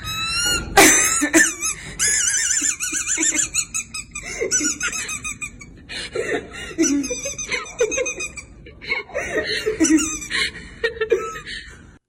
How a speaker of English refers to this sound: The little white squeaker in the toy got lodged in his esophagus, and thank God he could still breathe. But every time he did, it made the dog toy sound off, and it was getting louder and funnier when he laughed.